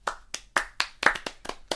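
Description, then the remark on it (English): Golf claps: a slow, steady run of light hand claps, about eight crisp slaps evenly spaced, sounding thin and sarcastic rather than enthusiastic. No voices accompany them. “Golf claps.”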